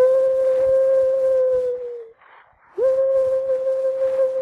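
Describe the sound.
A person imitates a bird call with two long, steady, mid-pitched notes separated by a brief pause, loud over a constant rough background noise.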